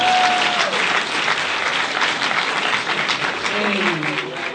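A crowd claps steadily for several seconds, a dense, sustained wash of applause with a few faint whistles rising through it, given as a round of applause for a couple shown in a picture.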